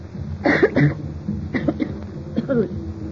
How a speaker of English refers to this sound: It's really very seldom that I cough any more like that.